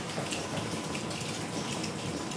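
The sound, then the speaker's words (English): Water dripping and trickling through a coal mine tunnel in a dense, constant patter, almost like falling hail, steady throughout with no voices. “It sounds like it's hailing, but the water is coming through. We're in a tunnel.”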